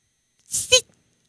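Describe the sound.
A person imitates another person's sneeze with a single short burst: a breathy rush of air followed by a sharp, high-pitched squeaky 'choo,' then silence.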